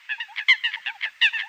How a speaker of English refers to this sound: It's a calm winter morning. The lake is still. What is that sound? Ah, the cackling, grunting, and croaking of American coots calling to one another.